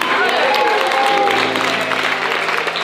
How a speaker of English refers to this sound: So because she fell out, they're all clapping and amazed, right?